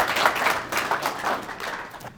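An audience breaks into steady applause, dense overlapping claps forming a bright, continuous crackle that holds at an even level for a couple of seconds with no talking.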